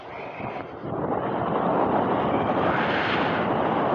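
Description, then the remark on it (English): A blast of wind buffets the microphone, a broad roaring rumble that swells after the first second and stays loud and steady to the end, with no voices. “Oh my God, now that's windy. I bet you that's showing up on the sound. A gust of wind.”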